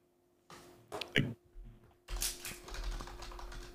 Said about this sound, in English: furiously typing away.